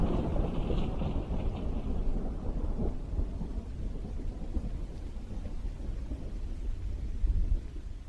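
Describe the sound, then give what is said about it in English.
A low, continuous rumble of faint distant thunder from the east rolls on for several seconds in the dark with no rain, deep and muffled, with a faint hiss in the higher range early on and no voices. “I can hear faint thunder from far away. No rain at all, but it's rumbling from the east.”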